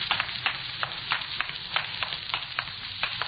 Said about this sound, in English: You hear water running? Sounds like it's coming from inside.